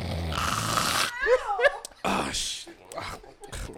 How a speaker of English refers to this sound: And they think somebody woke him up. No, nigga, that was you. Oh, that was. Who playing with me? No, nigga, that was your loud snoring ass waking yourself up, nigga.